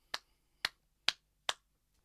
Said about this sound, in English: Standing golf claps. I'm standing right. Well, I was standing. I'm standing right now for you, Tony.